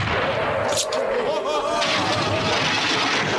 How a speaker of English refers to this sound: And then at the end, they finally get the cannon ready and the curtains close, and then it goes off.